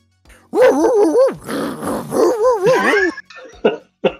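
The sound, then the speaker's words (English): A dog growls in a few long, wavering, throaty bursts with rising and falling pitch, then gives a couple of short, clipped snarls at the end. “That's the noise he makes when he procreates, I assume.”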